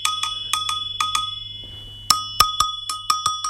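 An agogo bell is struck in quick pairs of bright metallic clanks, pauses briefly, then returns with louder, faster hits ringing out clear with no voices, played along with the Humpty Dumpty nursery rhyme.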